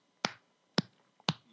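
Three sharp hand claps about half a second apart, each crisp and fairly loud with a quick decay, separated by near silence and no voices.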